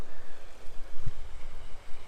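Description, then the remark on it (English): Sea water laps softly against rocks on a beach at high tide, a steady wash of splashing that swells and ebbs in small irregular surges, with a faint low rumble of wind underneath and no voices. “And I'm sure you can hear that beautiful sound of the water just lapping on the rocks in front of me.”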